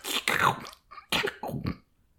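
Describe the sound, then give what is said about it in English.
A person makes wet, sloppy slurping and smacking noises with their mouth, imitating someone slurping food off the ground like a dog, in a few bursts over about two seconds with no talking. “Not lapping up. Sort of like slurping. Mouthing it up.”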